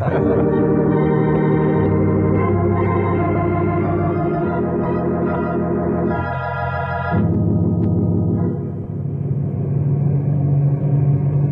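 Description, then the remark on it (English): A loud, steady propeller engine of an amphibious plane in flight, flying north past the Blue River into lake country, drones throughout, a dense rumbling hum with layered tones that holds constant, dipping briefly before resuming at full strength. “It's a good thing this is an amphibious plane.”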